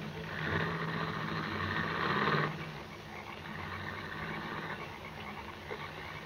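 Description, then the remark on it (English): A car engine rumbles for a couple of seconds, then drops off abruptly as the vehicle drives away in the rain, leaving a steady, rain-like hiss in the background. “He held me a moment longer, and when the car had gone, he released me.”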